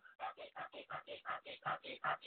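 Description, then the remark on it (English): A person imitates the rapid, shallow breathing of someone stressed, with about eleven quick, breathy huffs in a steady, fast rhythm, like panting. There is no talking over it. “When you're stressed, you are never deeply breathing. Never. Think about it. When your mind is running a mile a minute, your breath is like this.”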